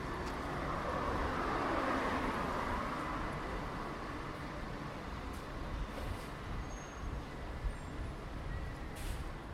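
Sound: city street traffic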